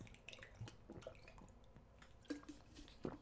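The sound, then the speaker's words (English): Quiet wet slurps and small liquid squishes, a few soft sips of water taken in short bursts with brief pauses between them, no talking. “Let me just get a little sip of water here, getting dried out from my weekend of sin.”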